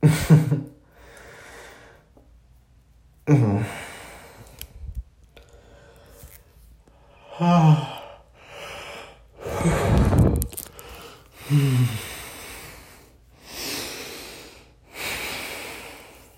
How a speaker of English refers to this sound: I'm going to need to edit out some of this heavy breathing, or else like 50% of this whole thing will just be me breathing heavily.